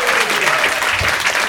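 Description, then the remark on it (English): Steady, dense applause from an audience at a stand-up comedy show for guest Simon Donald, many hands clapping at once in a continuous loud crackle with no pauses over the short span. “Will you please give a massive round of applause to Simon Donald?”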